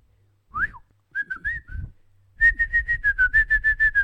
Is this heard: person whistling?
yes